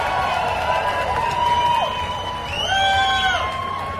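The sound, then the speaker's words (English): A large crowd of race fans cheers and whoops continuously at a trophy ceremony, applauding third-place finisher Tony Kanaan, with scattered shouts rising and falling over a steady roar of voices, loud and sustained throughout. “How about a race fans? Big nice round of applause for third place finisher, Tony Kanaan.”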